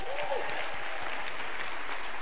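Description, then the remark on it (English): A short burst of steady clapping from a group of people applauding the DJ, a dense, even crackle of many hands across the whole clip with a faint voice rising briefly near the start. “So when … in the back, which give a round of applause for ….”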